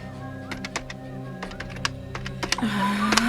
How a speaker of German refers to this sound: Im Flur im zweiten Stock hing ein alter Münzfernsprecher. Zittrig vor Hast warf Gabi 50 Cent ein und wählte die Handynummer ihres Vaters, die sie auswendig wusste.